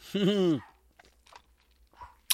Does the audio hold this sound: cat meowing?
no